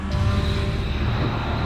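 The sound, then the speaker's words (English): A luxury car drives fast along a South Carolina country road, its engine and tire roar forming a steady, loud, low rumble that holds unchanged throughout, with no voices. “Successful businesswoman Darlene Wooten speeds down a South Carolina country road.”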